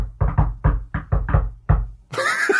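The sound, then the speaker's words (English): A quick run of loud knocks on a tabletop as two people knock together on the way out, some landing as slightly offset pairs, not quite in sync, followed by a brief voice at the end. “Let's knock together on the way out, shall we?”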